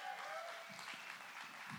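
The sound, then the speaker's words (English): A church audience at Core Church applauds the pastor's fifth year in full-time ministry, a steady wash of clapping, a dense crackling noise with no gaps that holds an even level for a couple of seconds. “When I was going over that in my head, I was not sure if people would clap or if that was going to be really awkward.”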